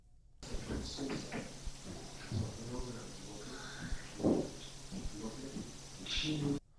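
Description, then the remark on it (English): A single dull knock, as on a door, cuts through a hissy, muffled recording; just before it a faint voice seems to say "Hi," with other indistinct voice-like murmurs and scattered soft bumps around it. “All right, so just before the knock, you can hear a voice say, "Hi."”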